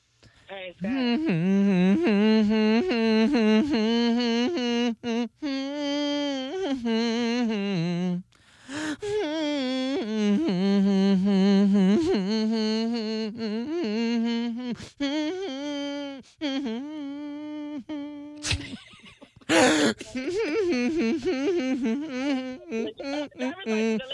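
A man hums a slow pop melody without words, his voice rising and falling in sustained, wavering tones over about twenty seconds, with a brief pause and a sharp breath near the end.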